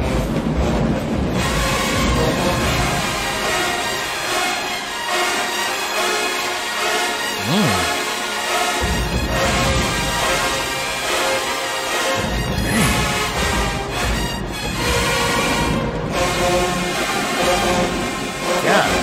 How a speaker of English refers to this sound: Hey, man, say these trumpets, I like them. They going for it, and it sound good.